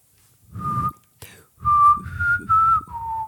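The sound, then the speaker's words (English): A person whistles a short tune from the Hunger Games film: one held note, a brief pause, then four connected notes that rise and settle lower, with breathy noise underneath. “I can't really whistle right now. You're asking a guy to do a whistle that on a movie he's never seen.”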